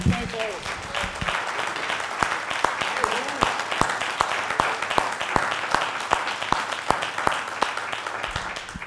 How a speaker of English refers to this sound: So let's give them a round of applause right here.